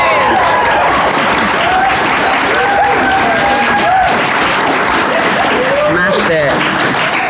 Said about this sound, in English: great clapping and cheering, Manchester.